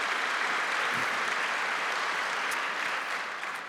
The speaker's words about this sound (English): Let's give him another round of applause for being here. Thank you so much.